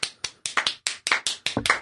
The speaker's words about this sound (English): I'm the one clapping enthusiastically. I'm clapping enthusiastically. Okay, fine. There we go. That's enthusiastic.